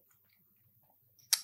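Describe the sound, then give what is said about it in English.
Near silence with faint low rumbling, then a single short slurp as someone takes a quick sip of a liquor drunk neat from a glass near the end. “Now, I need to have a sip of this because I haven't had a sip.”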